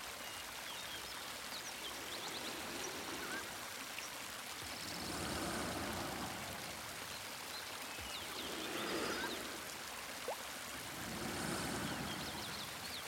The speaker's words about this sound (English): Sometimes the sounds of the waterfall and the warmth of my back are enough to lull me into a light sleep. Sometimes I simply lie there and take in the sounds of the forest